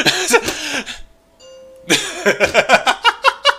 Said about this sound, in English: And my doorbell just rang. See, another package delivered. Thank you, UPS.